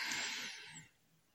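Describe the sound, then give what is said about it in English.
A slow, deep breath drawn in during a guided breathing exercise, heard as a soft airy hiss that lasts under a second and then fades into quiet. No one speaks. “Breathing in, hold, 1, 2, 3, in, hold, 1, 2, 3, in, hold, 1, 2, 3, and out.”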